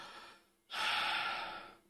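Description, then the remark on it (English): A voice imitates a woman's calm, normal sleep breathing: a soft, airy exhale fades out, then after a brief pause a longer, louder breath comes in and trails off. “Like, it'll sound like she's breathing normally, like a...”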